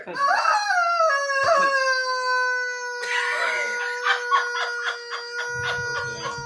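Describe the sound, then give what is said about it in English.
A rubber chicken toy, going off on its own, shrieks loudly: a long, strained, nasal scream that wavers, then breaks into a string of rapid, pulsing squawks, with no one talking. “If you wonder what that concoction really is, that is a rubber chicken that's literally screaming like a wonky bitch.”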